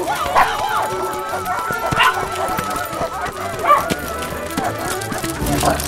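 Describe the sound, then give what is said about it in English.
About a dozen dogs on leashes bark and yip in a busy, overlapping chorus, fairly loud, with sharp yelps scattered throughout and a few whimpers between them. “Come on, we've only got 10 minutes until I have to return all these dogs.”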